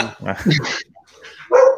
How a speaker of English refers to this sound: Well, I've had my dog going nuts right now for some reason.